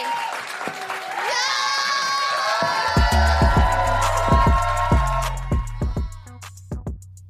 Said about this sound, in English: Please, a round of applause for Fathiya, Saleh, us, Bertulis-Fernandes, and Sue Me.